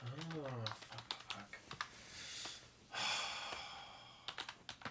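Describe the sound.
Crisp clicks of fast typing on a laptop keyboard, the laptop resting on someone's lap, come in irregular bursts, with a short voiced sound at the start and a couple of breathy rushes in the middle.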